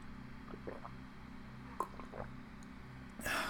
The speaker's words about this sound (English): And by sip, I mean drink roughly half the glass.